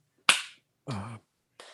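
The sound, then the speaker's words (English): A single sharp, loud clap rings out and decays briefly, followed by two short voiced sounds with a humming, vocal quality: a man in the audience slow clapping at a morning brunch show with an accordion player. “Stop slow clapping.”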